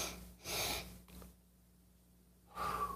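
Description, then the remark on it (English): Two breathy sniffs through the nose, the first stronger than the second, then a pause and a longer audible exhale. Quiet, with no talking. “Two sniffs and an exhale.”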